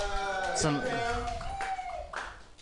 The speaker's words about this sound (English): We got golf claps in the radio booth and thumbs up.